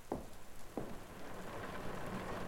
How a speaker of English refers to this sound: No. Just the rain and road.